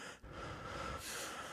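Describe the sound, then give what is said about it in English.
A voice imitates a masked killer's heavy, raspy breathing: a short hiss, a brief catch, then one long, harsh breath dragged out, with no words spoken. “Whenever he's close by, it ramps up the tension by having him breathing heavily, and you can kind of like feel his presence nearby just through the audio track.”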